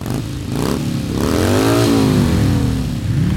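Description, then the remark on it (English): Loud engines of ginormous motorbikes rev up, the pitch rising and falling in a sweeping roar over about three seconds with a rattling mechanical edge, no voices. “In our last Veterans of the Armed Forces special, our adventure ended with Her Majesty the Queen riding off into the sunset on a ginormous motorbike, just like these ones.”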